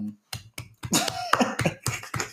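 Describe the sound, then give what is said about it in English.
Steady, brisk hand clapping, about eight sharp claps in an even rhythm, with a brief faint vocal sound partway through. “Claps for me.”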